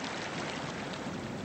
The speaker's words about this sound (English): Yeah, we can open the gates and show you how it works. With the gates fully open, 8,000 cubic feet per second of muddy Mississippi rush through. In some parts of the country, that would be a river in itself, but it's spare change here.